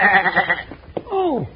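A billy goat bleats twice in an office, first a loud, quavering, pulsing cry, then after a brief pause a shorter bleat that slides downward in pitch. No one speaks over it.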